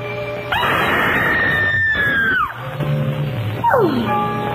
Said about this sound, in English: She fills the frame, and then suddenly emits a scream followed by an orgasmic sigh, and then purrs, screaming, relaxes me so.